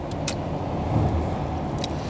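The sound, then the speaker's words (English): A van's 220-horsepower V6 engine pulls hard under acceleration while passing a tractor trailer on an entrance ramp, a loud, steady low rumble mixed with road noise that swells slightly midway, with a couple of brief high clicks. No one speaks. “220 horsepower here in the van, using every bit of my V6.”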